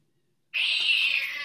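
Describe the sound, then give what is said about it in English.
After a moment of silence, a cat lets out one long, high-pitched meow that holds steady and sounds clear, with no one talking. “A man on First Street complained that stray cats kept defecating in his yard and that he couldn't keep bending over to clean off his shoes.”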